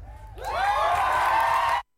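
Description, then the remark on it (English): A crowd assembled outside the Dáil for the USI march on education bursts into loud cheering and whooping after an impassioned speech, voices rising together into a sustained roar that holds for over a second before cutting off abruptly. “making a very impassioned speech to the assembled crowd outside the Dáil this afternoon.”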